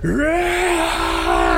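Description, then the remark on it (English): A loud, sustained vocal cry held at a steady pitch for well over a second, rising at the start with a rough, strained edge: two players yelling together, screaming their zealot battle cries to the sky during a game. “Both of you screaming as you use your zealot cries to the sky.”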